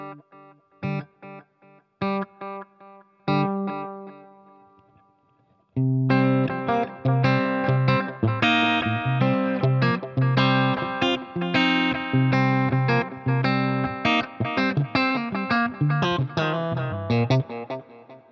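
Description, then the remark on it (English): An electric guitar played alone, drenched in delay and reverb, with the delay speed turned down slightly and a little reverb added: a few sparse picked notes ring out first, then a fuller, continuous passage of notes blurs together in echoing trails. “So turn the speed down just a little bit. I'll add a little bit of reverb as well.”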